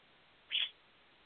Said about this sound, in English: Hi, buddy. I see you. I know. You're a bird. You want attention.